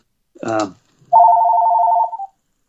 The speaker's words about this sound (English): So my phone is ringing, but I'm going to turn it off. So we're okay here.